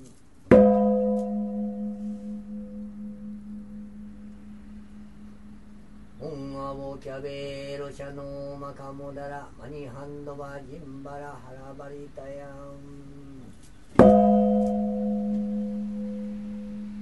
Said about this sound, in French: Et ça, là, on va écouter les cloches du temple de Daikyo Doji, où il y a manifestement des gens derrière qui, ou à côté, en tout cas pas loin du micro, qui en même temps récitent une prière. Voilà donc les cloches du temple de Daikyo-ji au Japon.